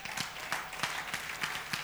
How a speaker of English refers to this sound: Oh, this one, he deserves applause. You have to clap for him.